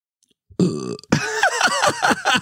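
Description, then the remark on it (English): A man burps loudly on command, a short croaky belch followed right away by a longer, rougher one that warbles and gurgles for more than a second. “Can you burp a command? I can make it sound like I can.”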